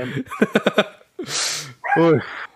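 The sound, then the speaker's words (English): A small dog named Chester yaps in a quick run of four sharp barks, followed by a breathy huff and one more drawn-out, whiny bark. “have to deal with a barking little dog every now and then.”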